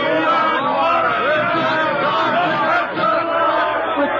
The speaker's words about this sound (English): Well, they seem to be cheering for you, Professor. Me? Why? What is this? What have they got out there? Sounds like there are a million of them. There are exactly 97 of them.